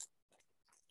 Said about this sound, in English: Yeah, ooh. We're back on our bullshit of chewing things into the microphone.